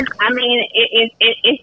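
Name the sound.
telephone dialing tones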